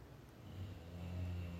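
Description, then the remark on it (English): A bulldog named Basil snoring, heard as a low, steady rumbling drone that swells slightly over the short stretch, fairly quiet and with no talking. “Can you hear him snoring, like, for real?”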